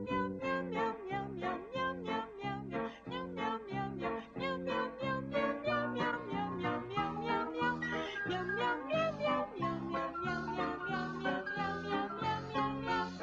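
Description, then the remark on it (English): A catchy jingle for Meow Mix cat food: rhythmic repeated cat meows sung to a bouncy melody over backing music, loud and steady throughout with no talking. “Meow Mix tastes so good, cats ask for it by name.”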